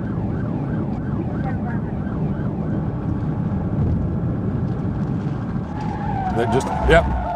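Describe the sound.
A police siren wails over a roaring car engine as a police car performs a PIT maneuver on a highway, then tires screech and a short, heavy thud lands near the end as it rams the car, with voices faintly underneath.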